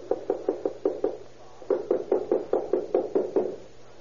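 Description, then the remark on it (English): Two rapid bursts of firm knocking by police on the door of apartment number 7 in an apartment house, the first about six quick raps, then after a short pause a longer run of around nine, fairly loud with no voices. “Hit it again. Open up, Mueller. Police”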